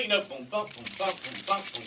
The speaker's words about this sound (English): Yeah, because we all did that. Get our keys out.